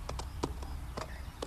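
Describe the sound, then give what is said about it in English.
Hooves of a horse with a rider on its back clip-clop in a loose, uneven rhythm, about six sharp knocks over a second and a half, moderately loud over a steady low background rumble. “I wish I could get down from this horse.”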